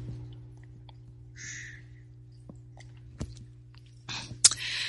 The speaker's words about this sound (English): And so, time for me to have a little sip of my tea here, my morning tea.